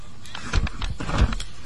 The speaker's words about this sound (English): Car pulls out here. Oh, almost hit him, right, honey? Saw that?